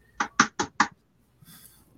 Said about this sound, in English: Go ahead and knock on wood real quick.